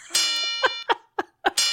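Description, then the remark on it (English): A double bell sound effect in a quiz game, marking a bonus question: two bright, ringing chime strikes with sustained shimmering overtones, about a second and a half apart, with a few short, softer bursts of sound between them. “That's a double bell for a bonus question.”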